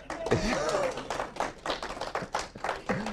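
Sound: applause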